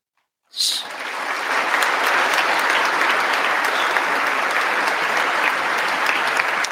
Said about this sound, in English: Everyone in that room knows that there are Nazis that are the main force of his army. They know this. And they sat there and applauded that.